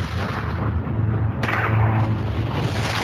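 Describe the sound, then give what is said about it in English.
A deep, rumbling nuclear bomb explosion boom, an airburst detonating kilometers above the surface from a weapon the size of the Empire State Building dropped from space, loud and sustained, with heavy low-end roar and a sharper burst partway through as the blast swells, no voices present. “We're talking nuclear weapons the size of the Empire State Building, dropped from space and detonating kilometers above the surface.”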